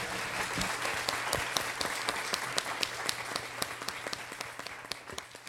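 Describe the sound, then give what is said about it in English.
An audience at an author reading at the Midtown Scholar Bookstore applauds the authors steadily, a dense patter of many hands clapping at once, with some sharper individual claps standing out through the sustained wash of sound. “Can we give our authors another huge round of applause?”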